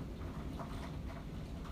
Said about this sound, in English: Damn, that rain's coming down. Y'all hear that? Well, this episode is featuring the rain.